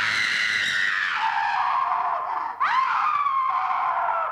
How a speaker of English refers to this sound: They're both under the covers, laughing and talking, but we don't get to hear them, because this scene plays mostly like a silent movie, no human voices, except for one scream at the end.